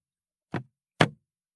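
An attempt to honk a car horn live from inside a car that instead gives two dull, heavy thumps, like a fist punching the car dashboard, about half a second apart. Each is short and bass-heavy, with no voices or other sound around them.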